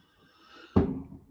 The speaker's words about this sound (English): Does anyone hear them fireworks going off? Ah, okay. They're going off, all right. I think I just went through about 15 of them. You know, but hey, it's New Year's Eve.